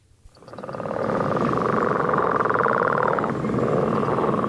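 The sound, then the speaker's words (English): Someone imitates a northern leopard frog's call with their voice: one long, loud, rattling snore-like croak of rapid pulses, swelling in quickly and holding steady for about four seconds. “Let's hear your sexiest northern leopard frog.”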